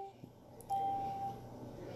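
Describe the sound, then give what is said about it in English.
An annoying electronic beep: a faint short blip, then one loud, steady mid-pitched tone lasting about half a second, over a low background hum. “Don't know, but I knew you heard this fucking dum dum annoying ass fucking beep, man.”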